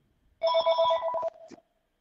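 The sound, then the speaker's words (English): A landline telephone rings once with a loud, trilling electronic bell, a rapid buzzing warble lasting about a second before cutting off, followed by a brief clatter. “Hey, your house phone's ringing.”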